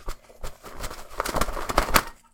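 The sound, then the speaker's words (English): Paper slips, with 12 movie titles written on them, rustle and rattle inside a sack as it is shaken to pick a movie at random: a quick series of crisp, papery bursts in an uneven rhythm, fairly loud, with no one talking. “Yeah, I put 12 movies on little slips of paper inside this sack. If you want to give it a shake.”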